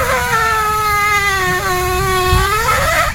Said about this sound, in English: The end of that is the best part, right? Where it's squeaking, squeaking, squeaking, then just goes bong, bong, bong. Again, the video called Waffle Poots, somebody recording their waffle maker as it makes squeaky toot noises.